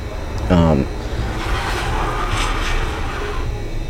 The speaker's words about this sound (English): Who is that? Just a car.